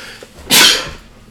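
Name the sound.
sneeze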